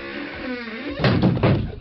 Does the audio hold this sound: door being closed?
yes